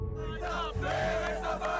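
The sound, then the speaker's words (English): A protest crowd of Jews opposed to the peace process chants and shouts "Peres, go home" and the name Yigal Amir in unison, a dense wall of many raised voices with rhythmic, insistent cadence that stays loud throughout the short burst. “Peres, go home, screamed these Jews opposed to the peace process.”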